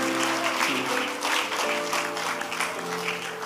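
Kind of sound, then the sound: crowd, audience clapping in praise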